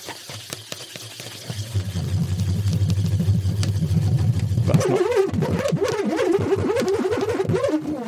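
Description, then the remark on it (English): A hex nut whirls inside a swirled balloon, first sliding with a low, steady buzzing rumble, then rolling in a louder, higher, wavering whine that rises and falls rhythmically like a revving engine. “instead of rolling the nut down the magazine, which obviously finishes, you have a circular thing you can roll it around. So if we swirl the balloon”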